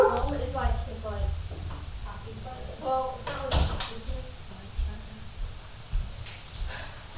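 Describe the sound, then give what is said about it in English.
A dog whimpers in short, repeated high whines, broken by a few sharp barks, with thumps and rustling movement around it. “Oh, and then there's my other dog”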